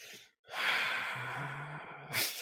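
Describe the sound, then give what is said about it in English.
A person who has been shot lets out a heavy, agitated exhale for well over a second, followed by a sharp intake of breath. The breathing is loud and strained, with no talking. “You just hear aggravated breathing.”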